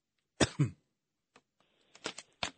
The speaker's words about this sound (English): No, that was my fault. I was coughing.